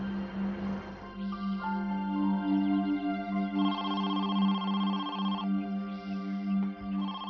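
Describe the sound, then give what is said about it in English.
An electronic telephone ringtone for an incoming phone call chirps in a steady, repeating melodic pattern of bright tones, fairly loud, with no one speaking. “Five days after Regina's disappearance, Carolyn received a phone call.”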